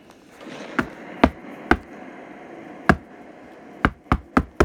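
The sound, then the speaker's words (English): Sharp, loud knocks on a family's door in uneven bursts: a few spaced raps, then a quicker cluster of four near the end, over a faint background hum. “then they hear a knock at their door.”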